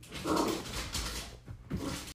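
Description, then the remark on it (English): A dog named Anna whimpers in two short, whiny bursts over steady scratching and scuffling noises at a door, fairly loud throughout with no talking. “Sorry, Anna just started being obnoxious and scuffling at the door there, which was loud and shitty to try and record around.”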